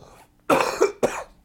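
Two harsh coughs in quick succession, the first longer and rougher, the second shorter, close to the microphone with near silence around them.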